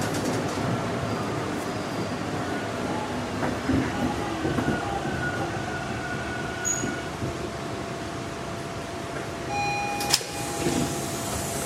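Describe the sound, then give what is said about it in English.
A subway train rumbles steadily into a station, thin metallic squealing tones ringing above the dense roar, with a sharp clank near the end and no voices. “Could be the sound of a subway coming into its last stop for the night.”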